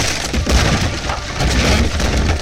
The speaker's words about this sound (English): I never finished my sentence as the door to my tower was ripped from the hinges and tossed away into the night.